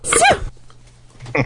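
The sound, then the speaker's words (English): A replayed recording of a single sharp sneeze from a woman, bright and breathy with a high voiced burst, followed by a low steady hum and a short noise at the end. “Just play her sneeze again first.”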